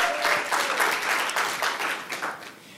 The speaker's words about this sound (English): Tried to get her to stay up there and accept that applause from all of you, but she was happy to be done with that thing, I think.